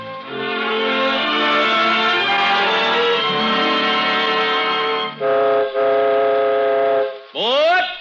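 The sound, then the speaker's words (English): A loud train whistle sounds one long sustained blast, then a few shorter hoots, and ends with a rising, swooping whistle tone, opening an imaginary train ride in a Christmas Eve Cavalcade of America radio broadcast. “So, this first peacetime Christmas Eve, the Cavalcade of America takes you on an imaginary train ride, swooping all over the country, seeking out the names of places which stand for home in such a special way tonight.”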